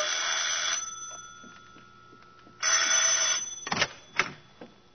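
A telephone bell rings in two loud, bright bursts separated by a pause, followed by a few sharp clunks and clatters, with no voices present.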